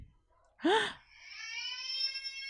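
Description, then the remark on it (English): A baby's cry: a short, loud, rising wail, then a long, steady, high-pitched whining cry that holds its tone. No distinct knocks stand out, and no one talks over it. “A crying baby hitting a door?”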